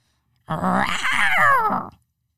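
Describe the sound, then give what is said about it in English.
A person's voice imitates a tiger's roar: a single loud, sustained growling cry lasting about a second and a half, wavering in pitch before cutting off, with no other talk. “If you were a tiger, what sound would you make?”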